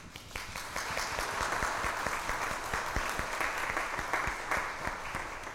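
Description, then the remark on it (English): An audience breaks into applause to welcome two women to the audience, many hands clapping in a dense, steady wash that holds strong for several seconds with no one speaking over it. “Let us welcome them with a round of applause.”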